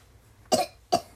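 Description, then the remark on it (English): Two sharp, fairly loud coughs about half a second apart from a sick person coughing into a phone, each a brief harsh burst against a quiet background with no talking. “thank you for coughing into the phone.”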